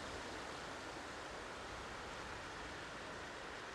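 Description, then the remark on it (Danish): A continuous, even wash of rising sea surf roars steadily without distinct breaks or swells, a dense hiss of water heard alone with no voices. “Lyden af havet, der stiger. Bølgernes salt tæt på nu.”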